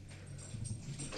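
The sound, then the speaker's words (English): A puppy whimpers softly with a low, wavering whine, and a brief scratching rustle comes in near the end. It is quiet, with no talking. “Get in here, puppy. Stop that. Scratch it.”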